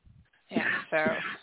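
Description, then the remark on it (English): A man coughs twice in quick succession, two harsh, rasping bursts with a throaty, voiced edge, following a brief low rumble. “Yeah, so as he coughs.”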